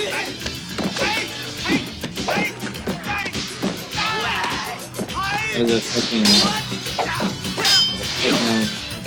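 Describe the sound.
A video game shatter gun fires with sharp shattering effects, bursts of clanging, crashing impacts and tinkling debris repeating throughout, loud and busy, with people talking over the action.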